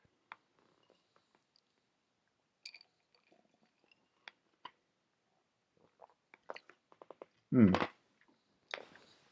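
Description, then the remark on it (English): Someone crunches ice, with scattered sharp cracking bites spaced irregularly, building to a loud grinding crunch toward the end, then a final brittle snap. “Pardon me, crunching ice, very irritating.”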